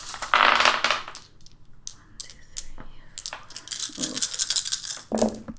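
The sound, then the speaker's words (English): Several dice clatter and tumble across a hard tabletop in a quick burst of sharp, rattling clicks that trail off into scattered taps, fairly loud with no one speaking. “You're going for that dice spread right there, pretty much.”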